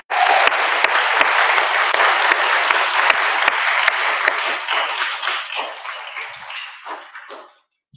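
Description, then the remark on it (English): A church audience at St. John's breaks into sustained applause for the children, a dense wash of clapping that holds steady for several seconds before thinning out and fading away near the end. “Can we all recognize them, please, with a round of applause?”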